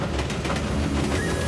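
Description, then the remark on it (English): A new train engine rolls steadily along the rails into Knapford Station on the island of Sodor on a breezy afternoon, a continuous low rumble with a quick, rhythmic clatter of wheels and a faint thin tone creeping in near the end. No one speaks. “It was a breezy afternoon on the island of Sodor when a mysterious new engine purred smoothly into Knapford Station.”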